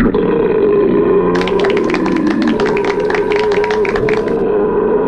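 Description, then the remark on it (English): A long, loud belch rumbles on for about five seconds, with a raspy, crackling texture through its middle before it trails off. “We'll be discussing and rating these beers with the suds ratings plus our signature belching sounds.”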